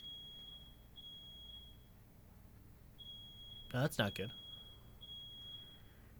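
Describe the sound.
A fire alarm beeps in repeating groups of three high, piercing tones, fairly faint, with a short burst of a person talking midway through.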